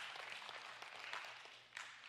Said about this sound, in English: amen, you can clap to that.